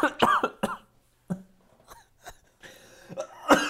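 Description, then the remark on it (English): A fit of harsh, sputtering coughs from someone who inhaled a Red Bull drink comes in uneven bursts, with throat-clearing and ragged breaths between them, ending on a louder hack. “Sorry, I inhaled my Red Bull.”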